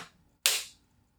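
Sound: hand clap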